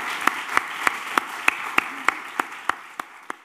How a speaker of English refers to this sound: So can I have a huge round of applause, please, for our panellists today. Thank you.